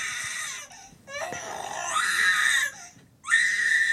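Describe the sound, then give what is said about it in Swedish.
An infant screams and cries loudly in long strained wails broken by two brief gasping pauses, the voice sounding slightly hoarse from much screaming. “hur, när jag hade filmat när … skrek, och jag ska spela det för dig”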